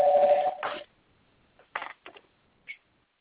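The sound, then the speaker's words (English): Telephone keypad tones as someone dials a call to a workplace: a longer steady beep at the start, then a few short, separate key presses with brief gaps between them. Clear, with no talking. “Can you put me on hold? I got to call for him to work.”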